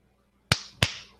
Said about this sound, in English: I'm gonna say this, and then you're gonna do the hand clapping thing.